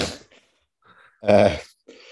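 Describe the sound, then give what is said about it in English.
A dog snores nearby: one loud, rough snort dominates, with softer snuffling breaths before and after it and quiet gaps in between. No one speaks. “My dog is snoring beside me.”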